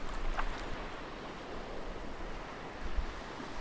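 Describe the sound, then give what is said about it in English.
Steady wash of waves and surf with a low, windy rumble, as a boat is pushed into the water; a brief dull thump lands near the end. No one speaks. “get her ass off the fucking boat so we can push it in the water.”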